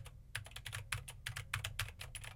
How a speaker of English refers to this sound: Now I am typing on a keyboard with Gatoron blue switches to see how much of my voice versus how much of the keyboard it picks up.